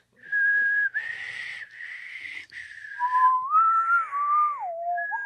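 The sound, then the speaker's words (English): Someone tries to whistle: a breathy, airy held note that sputters, then a wobbly tone sliding up and down in pitch. No talking. “Can you imagine you were trying to start a revolution, but you couldn't whistle and nobody will follow you? I can't whistle.”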